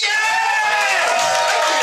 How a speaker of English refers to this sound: I want a big applause. Now, I know you've been applauding all night. You put your arms got fatigue. I actually literally don't give a shit. I want a big applause for this guy because he deserves it.